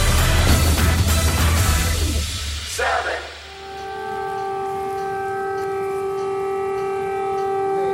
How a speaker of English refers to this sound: That's air raid sirens ringing out across Kiev as Russian President Vladimir Putin began what he described as a special military operation in Ukraine.